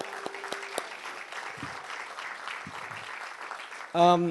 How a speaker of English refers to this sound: I would like to thank you, the interns. You guys can give yourselves a round of applause, please.